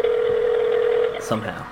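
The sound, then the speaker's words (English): A single steady electronic ringback tone sounds for about a second on an outgoing phone call, then cuts off as a voice briefly begins speaking. “Every ring gets more suspenseful.”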